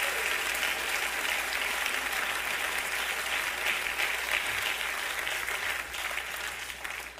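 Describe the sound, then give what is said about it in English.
A church audience claps their hands to the Lord in a steady, dense wash of applause that holds for several seconds, then thins slightly toward the end. No one speaks over it. “Clap your hands to the Lord all over this place.”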